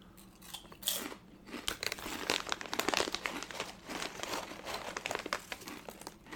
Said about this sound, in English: This is some crunchy potato chips.